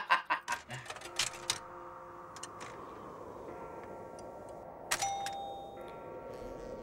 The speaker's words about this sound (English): We have a doorbell at work for if we forget our badges to get in. Mm-hmm. It plays half of that and it bothers me every time.